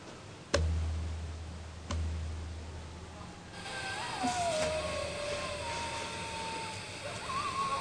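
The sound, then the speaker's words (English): Coyotes howling at 3:30 in the morning on the 4th of May in thin, high-pitched, wavering cries that slide up and down, beginning partway through after two sharp clicks over a low hum, and continuing softly to the end. “They're the sounds of coyotes.”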